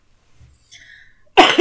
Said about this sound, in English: God, I can't have a cough tonight.